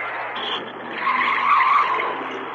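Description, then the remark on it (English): A car roars off hard with its tires squealing, a loud, sustained screech that swells midway through before easing slightly, with no one speaking. “There goes a driver who doesn't care much about money. He's wasting gasoline.”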